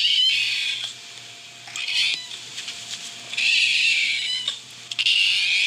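A female cat named Dinah meows repeatedly in a hoarse, raspy voice, several drawn-out cries separated by short pauses, loud with no one talking.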